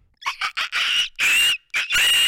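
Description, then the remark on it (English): A person imitates a dolphin with a rapid series of high, squeaky chirps and whistles, several short bursts followed by longer shrill squeals, fairly loud with no talking. “Well, I do the dolphin.”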